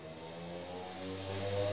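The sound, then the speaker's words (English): A motorbike passes by, its buzzing engine note growing steadily louder and then dropping in pitch as it goes past. No one speaks. “Another motorbike.”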